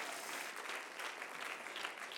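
An audience claps their hands in a steady, dense wash of applause, many overlapping claps blending into a continuous bright patter with no voices standing out.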